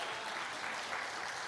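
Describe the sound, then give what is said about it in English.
Steady applause from a crowd, a dense, even wash of many hands clapping with no gaps, filling the whole short stretch at a consistent level. “Can we just give him a good round of applause?”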